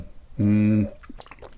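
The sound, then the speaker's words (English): Mouth noise after a sip of whiskey during a whiskey tasting: a short, steady hummed vocal tone, then a few faint wet clicks and lip smacks. “Sorry if you're not used to whiskey tasting podcast. There's a lot of mouth noise”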